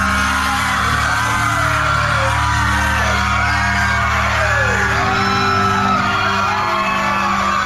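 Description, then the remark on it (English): A crowd screams and yells together in a dense, continuous roar, with overlapping shrill voices and whoops rising above a steady low rumble throughout. “It's a crowd.”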